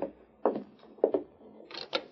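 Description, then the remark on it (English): A door opens: a few sharp clicks and knocks of the latch and handle, followed by a brighter scraping, rattling burst as it swings. No one speaks. “He's dismounted. I'll open the door.”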